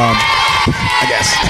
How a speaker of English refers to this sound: Like the most like tongue-in-cheek applause.